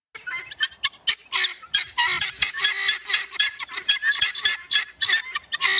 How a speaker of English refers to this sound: this is the sound of the actual bird. So it's kind of seagull-like a little bit. Like it's like got a seagull screechy, and a crow. Yeah, like a screechy part and then a something else part. This is a male guinea fowl.